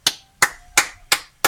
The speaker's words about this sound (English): See, and they really do it. They give it a full, like, 2 minutes. And they do it every single night. Listen to them. Cheering, hooting, and a hollering. People bang pots and pans. They honk their horns.